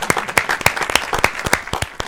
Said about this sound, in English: Wait, I got a better applause than that.